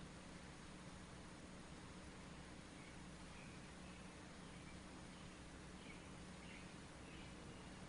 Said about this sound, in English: But those birds, the chirping of the birds is also within the silence of the mind.